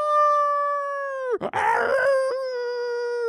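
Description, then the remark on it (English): A long, loud, steady wolf howl, with a brief raspy break about midway before the tone resumes and carries on to the end. No talking. “It's Elvis Wolf.”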